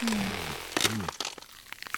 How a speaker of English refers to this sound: I'll just munch on the tops of these palm trees.